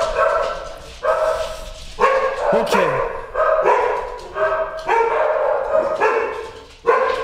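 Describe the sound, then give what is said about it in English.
Several dogs bark repeatedly in loud, overlapping bursts, with a brief yelp mixed in, while a person says a word over the noise. “It's a dog day on the podcast.”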